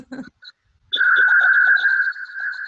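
A chirping glitch from a bad internet connection: a couple of short chirps, then a steady warbling, trill-like tone that runs loudly for nearly two seconds, with no one talking.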